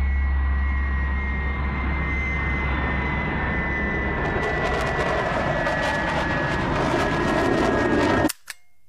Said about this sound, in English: There's a plane coming down much too fast. The small plane crashed in rural West Wales.